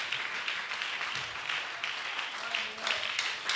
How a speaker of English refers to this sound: Stand to your feet, everybody. Yeah. Clap your hands for the Lord. Oh, go ahead and clap your hands for the Lord.